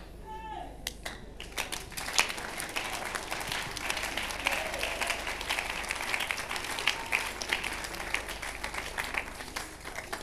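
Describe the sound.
An audience claps steadily for about nine seconds during a sermon, a dense, even patter of many hands at moderate loudness, after a brief voice at the very start.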